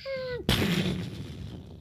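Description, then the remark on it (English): A brief descending whistle cuts off into a sudden loud explosion that makes part of a castle turret crumble and fall, followed by a crackling, rumbling decay that fades over the next second or so. No voices. “Another explosion sounded, and part of a turret crumbled and fell.”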